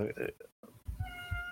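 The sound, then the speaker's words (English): A cat meows a couple of times, fairly loud, with a drawn-out tonal cry near the end while people talk in the background. “Your cat disagrees.”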